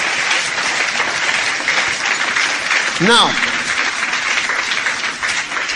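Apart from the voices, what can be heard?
audience clapping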